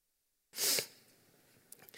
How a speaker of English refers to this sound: Excuse me, I'm going to cough, which is real awkward for all.